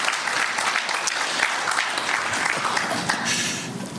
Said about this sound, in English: In fact, I was telling someone last night, this is my 42nd year of sobriety. Yeah, you can clap.